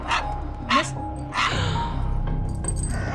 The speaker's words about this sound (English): So the next day, Phoebe, the dog, is barking.